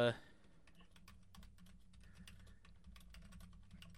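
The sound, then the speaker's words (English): Rapid, irregular clicking of keys on a computer keyboard, fairly quiet, continuing steadily for several seconds over a low background hum after a brief burst of sound at the start. “Hang on. I'm typing.”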